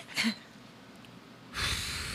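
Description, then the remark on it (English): A person does a loud, exaggerated heavy-breathing impression as a mock prank phone call: a short sharp breath, a pause, then a long rasping exhale. “Come on. Heavy breathing.”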